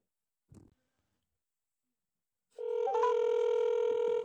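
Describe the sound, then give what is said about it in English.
A soft click, then after a pause a steady, loud electronic telephone keypad tone that shifts pitch briefly partway through and holds until near the end, with no talking, as a phone number is dialed to place a call. “Well, it helps to have the phone number.”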